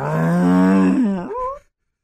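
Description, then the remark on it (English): A voice imitates a truck engine revving as the driver hits the gas: a low, droning, harmonic groan held for about a second, then a rising, sputtering sweep in pitch before cutting off abruptly. “Yeah, it was like, you hear him hit the gas.”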